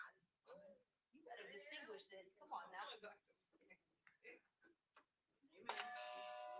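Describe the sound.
A voice talks, then a new small bell rings once with a bright metallic strike and lingers, its ringing tone sustaining to the end.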